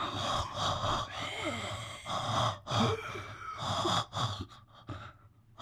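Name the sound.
imitated heavy breathing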